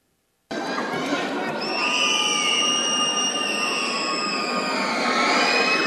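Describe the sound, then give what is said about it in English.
A fan's shrill, sustained high-pitched scream during a Utah State free throw at a basketball game in Vivint Smart Home Arena wails above the steady roar of a large indoor crowd, starting abruptly and holding for several seconds, loud. “Jerem, we have located the banshee scream.”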